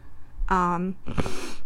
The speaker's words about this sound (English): Sorry, those sniffles are real.